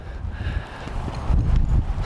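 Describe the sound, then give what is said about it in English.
Muffled hoofbeats of a horse trotting in a circle on a longe line thud in a steady rhythm on soft ground outdoors, with wind buffeting the microphone throughout and no voices. “So if he can trot around there and there can be some slack in this rope, he's not pulling against me, he's not diving to the inside of the circle, then I'm pretty happy.”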